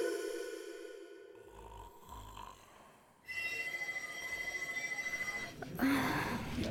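A telephone bell starts ringing partway through, a loud, steady, rapidly trilling ring that cuts in sharply after quieter low breathing or snoring-like sounds.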